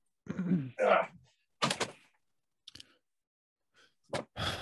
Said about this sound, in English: Let me just I just gotta open this door real quick.